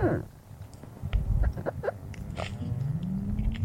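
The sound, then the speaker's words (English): Melting ice recorded underwater off the coast of Antarctica during the Antarctic summer: a dense, steady stream of clicks, pops and fizzing crackles over a low rumble, with occasional short squeaky creaks and a rising groan near the end. “This is the sound of the ice melting in the Antarctic summer.”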